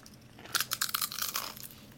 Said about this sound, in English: Listen to that sweet Utz crunch.